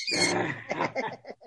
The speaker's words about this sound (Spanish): Ese perico no deja hablar.